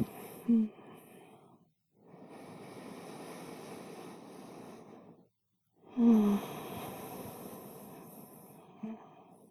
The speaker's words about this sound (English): You're gonna yawn again? Try this. Try not to yawn.